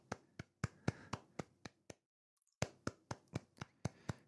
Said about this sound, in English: I'm just going to keep on clapping for pretty much ever because this is.